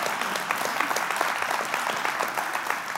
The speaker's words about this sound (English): Yeah, let's all clap our hands and declare it.